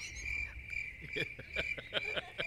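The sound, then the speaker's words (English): A cricket chirps with a steady, shrill, high-pitched trill that runs through the whole moment, moderately loud, while faint clicks and rustling sounds pop up underneath. “Yeah, that cricket now, come on, dude. That cricket was ill-placed.”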